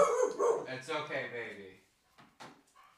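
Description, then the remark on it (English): A guard dog named Lucy barks at the hose man in a quick, tonal run of several barks, then falls quiet except for a couple of short, sharp sounds near the end. “Good guard dog.”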